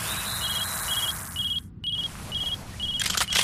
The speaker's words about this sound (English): It's my cell phone, nothing else.